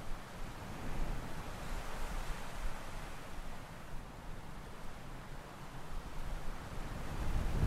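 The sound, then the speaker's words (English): Gusty wind buffets the microphone on a beach on Ghost Island, with a steady, roaring rush and uneven low thumps, swelling louder toward the end, with no voices present. “It is windy. As you can tell by the wind that is blowing into my microphone right now,”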